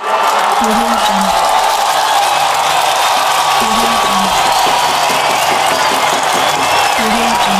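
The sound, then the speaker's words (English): A steady wash of crowd applause fills the whole stretch, dense and even at a constant level, with some murmuring voices mixed in underneath. “is the part that you add applause.”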